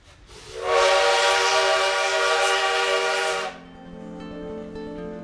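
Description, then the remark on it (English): A loud, sustained train horn blares for about three seconds, then cuts off, leaving the steady rumble of a train rolling along the tracks with a faint tonal hum. “In the fall of 1930, newlyweds Diego Rivera and Frida Kahlo set out on a long train ride, leaving their beloved Casa Azul in Mexico City to come to the United States.”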